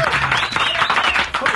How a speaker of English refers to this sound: And y'all give a big round of applause for special guest filling in for the brat this morning